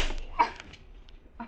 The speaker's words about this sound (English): What are you slapping me around for? That won't get you any points.